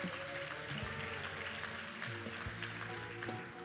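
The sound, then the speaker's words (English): A church audience claps steadily, a dense, even wash of many hands lasting several seconds at a fairly loud, constant level, with some low background tones underneath and no voices. “Yeah, can we clap at that?”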